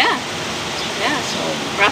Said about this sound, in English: Yeah. So, roughing it in the rain.